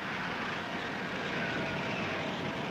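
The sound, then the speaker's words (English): The jet engines of Cobb's silver boat Crusader whine shrilly in a steady, loud, continuous roar with a high-pitched edge during a water speed record attempt, carrying it to 240 miles an hour, sustained throughout without pause and with no voices present. “Jet engines whine shrilly.”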